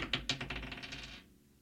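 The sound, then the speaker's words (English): A quick flurry of small hard clicks and rattles, like dice tumbling across a surface, starting sharp and loud, then quickly settling and fading out after about a second. “So the old dice are causing some shit.”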